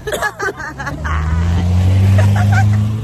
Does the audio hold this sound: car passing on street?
yes